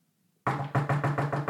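Five loud, evenly spaced knocks on a front door on Halloween after a brief silence, steady in rhythm, with no voices; a trick-or-treater in a ghost costume is knocking.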